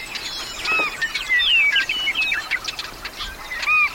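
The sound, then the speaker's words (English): A busy chorus of willets, swallows, snipes and wrens calls in a meadow over a soft background hiss. Bright, high whistles and quick chirps overlap throughout, with several short rising and falling notes. No one speaks. “I was oblivious to this whirling world of willets, swallows, snipes, and wrens.”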